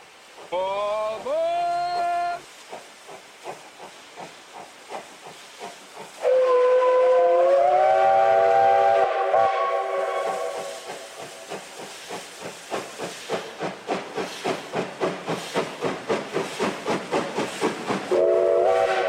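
A steam locomotive lets out two long, loud whistle blasts over hissing steam, then chuffs away in a steady rhythm that quickens, ending with another short whistle.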